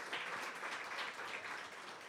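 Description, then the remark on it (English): An audience at a live show applauds, a dense, steady crackle of many hands clapping at once that holds an even loudness for about two seconds with no talking over it. “Round of applause.”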